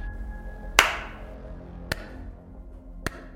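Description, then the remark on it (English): A slow clap from a figure in a long purple hooded cloak and gold mask: three sharp claps spaced about a second apart, the first the loudest with a brief ringing tail, over a low steady background hum. “Figure gives you a slow clap and says in a distorted voice,”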